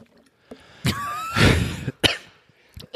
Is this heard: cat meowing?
no